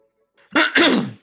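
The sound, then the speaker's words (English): A loud cough right into the microphone, two harsh bursts in quick succession lasting about half a second in total, with no talking around it. “So today, can you not cough into the microphone?”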